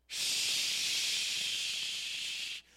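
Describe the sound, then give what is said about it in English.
A voice imitates rushing water, heard on opening a back door, with water flowing over a baptistry: one long, steady, high hissing breath lasting about two and a half seconds, loud and even throughout, with no talking. “I ran up the stairs, came over here, turned off the knob, and I'm seeing the water flow over the baptistry.”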